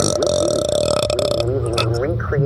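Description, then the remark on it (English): A long, loud, croaking burp rumbles for over a second, followed by someone talking and laughing right after it. “I'm sure people love watching us burp over videos.”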